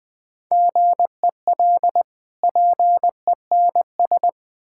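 Morse code at 20 words per minute, a single steady mid-pitched tone keyed into crisp short and long beeps, grouped with brief pauses between letters and words. No voices accompany it.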